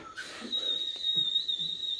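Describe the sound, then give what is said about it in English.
Someone whistles a loud, piercing high note held steadily for about a second and a half, imitating a flute, with a few faint low murmurs underneath. “Oh, get your flute and just go... Really loud.”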